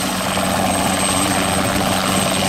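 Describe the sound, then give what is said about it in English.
A helicopter flies overhead during a rescue search for a missing person, alongside dog teams, park rangers and volunteers; its rotor produces a loud, steady, continuous churning roar with a low engine hum underneath. No voices are heard. “Helicopters and dog teams were involved, along with dozens of park rangers and volunteers.”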